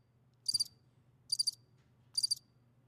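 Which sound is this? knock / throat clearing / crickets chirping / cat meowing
crickets chirping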